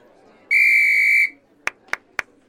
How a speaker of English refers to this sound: You have the whistle.